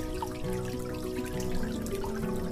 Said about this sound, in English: Do you have dripping faucets?